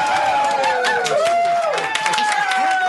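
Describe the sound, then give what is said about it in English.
A live studio audience cheers loudly and continuously, a dense wall of whoops, shouts and scattered clapping that fills the whole stretch without pause, enthusiastic. “Since we rarely ever have a live studio audience, I like the sound when they cheer for us.”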